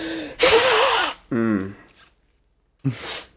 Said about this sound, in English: I confidently blow my nose, guys. And I do that at work, and I don't think I'm disturbing at all.